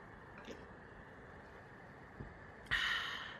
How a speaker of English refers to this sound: Drink some water with me. Actually, let's take a sip. Hold on.